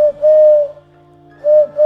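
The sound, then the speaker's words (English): A voice imitates an owl with two loud, steady, whistle-like hoots, each long and sustained, separated by a short pause, with no talking. “Did you like my owl?”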